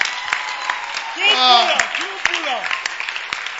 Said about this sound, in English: Clap for the dancing stars, the singing stars. Oh, I can't hear you. Keep clapping for them. And the film stars.